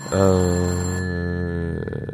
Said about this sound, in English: I dialed something and it's ringing. Can you stop the ringing? I just put it on silent. I don't know how to hang it up.